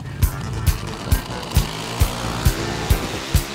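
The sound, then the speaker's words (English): Pro Stock Motorcycle drag racing bikes in the final round at the U.S. Nationals 2020 rumble in a steady, low engine drone, punctuated by sharp, evenly spaced bursts about twice a second. No one speaks. “Final round. Pro Stock Motorcycle, U.S. Nationals 2020.”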